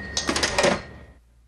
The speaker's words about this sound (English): Cash register.